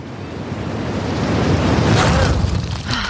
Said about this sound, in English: Lyssa casted the same spell she used to move Kreyvex and herself away from the Myrmidon encampment and hurled the threesome crashing into the main courtyard of the royal palace.